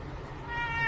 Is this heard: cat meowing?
yes